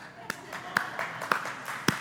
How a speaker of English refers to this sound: Seriously, golf applause.